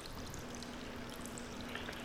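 Steady running water from a shower and a sink pours continuously with a broad hissing wash and a faint low hum underneath, no voices, constant throughout.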